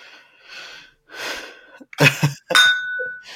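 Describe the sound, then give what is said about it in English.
A drinking glass is tapped, giving a bright ringing tone that lingers and fades over about a second, preceded by breathy, rustling noises. “No, I tapped the glass next to it.”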